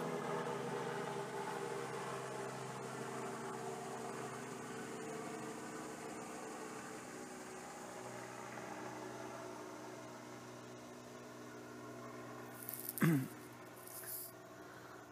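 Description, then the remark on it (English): While camping outdoors, a steady, droning engine hum from a helicopter flying overhead fills the background throughout, with trucks rumbling by and a brief louder rush of a passing vehicle near the end. “You can hear that helicopter going over us. You can hear trucks driving by.”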